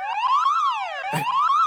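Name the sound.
door alarm blaring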